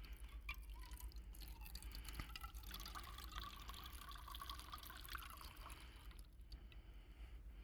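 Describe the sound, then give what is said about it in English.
Steady dripping and trickling water passing through a water filter, a continuous wet patter with small splashes, fairly quiet, with a low hum underneath and no one speaking. “By the way, this is the same water from Tuesday.”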